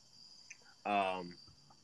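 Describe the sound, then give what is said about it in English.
Crickets chirp steadily and continuously in the background, a thin high-pitched drone, interrupted briefly midway by a short burst of a human voice. “Okay, dude, I hear crickets in the background.”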